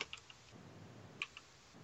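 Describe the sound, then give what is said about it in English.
A few small, sharp clicks and clatters tumble in two brief bursts as dice skitter across a hard tabletop, quiet against a faint background hiss, with no talking. “Let's see how the dice roll.”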